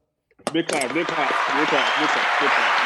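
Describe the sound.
Sudden burst of clapping applause that starts after a brief pause and keeps going steadily, a dense close-up wash of many hands, with voices calling out and talking over it.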